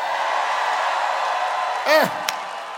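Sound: audience shouting together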